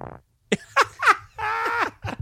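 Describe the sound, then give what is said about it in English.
A rapid string of loud fart noises, short buzzy blasts and one longer drawn-out squeal with wobbling, sliding pitch, with no talking. “Fart break.”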